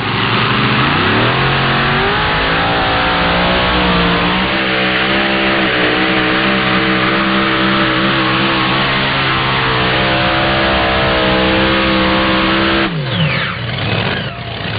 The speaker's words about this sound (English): What a beautiful pass. Torquing the left front of that tractor up in the air. Those twin Hemis. Ken Vaney heads on those Hemis. Pumping out about 3,200 horsepower apiece.